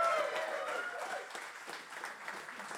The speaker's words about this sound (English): Did we have a good time? Can I please get a round of applause for the man with the index finger